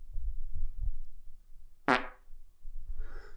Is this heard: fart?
yes